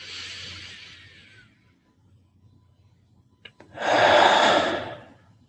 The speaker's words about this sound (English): And let us finish this practice with 3 deep breaths together. Breathing in. And breathing out. Again.